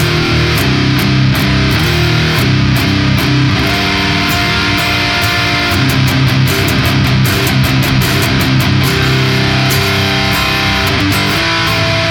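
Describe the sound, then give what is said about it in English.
A loud, heavily distorted electric guitar played through a Soldano SLO amp with a Fortin NTS pedal, chugging through a driving, rhythmic riff with bright, sustained chords and sharp repeated attacks, with no voices. “Okay, so this is what the Soldano and the Fortin sound like.”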